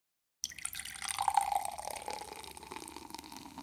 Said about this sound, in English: I'm actually going to pour this into a cup because first impressions are promising.